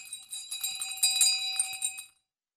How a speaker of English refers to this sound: Do you hear that bell off in the distance? I do. I think so. I think I hear it. Is it getting closer? Yeah, it's getting a little closer. That must be the injury report bell.